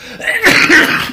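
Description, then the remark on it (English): A single forceful sneeze: a brief soft inhale, then a loud explosive burst of breathy noise that trails off over about half a second, with no talking. “Bless you.”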